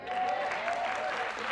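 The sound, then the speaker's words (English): A crowd at a weekly forum at New City Church applauds itself steadily, dense clapping filling the whole stretch at an even loudness, with a faint sustained tone running underneath. “My message today to our weekly forum here at New City Church, and you can give yourself a applause, you can't lose with what we use.”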